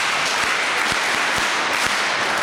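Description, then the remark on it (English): An audience at a Mass claps steadily to honor a person being acknowledged, a dense wash of many hands with a few sharper individual claps popping out. The applause stays at an even, fairly loud level throughout, with no voices. “So a big clap for Mrs.”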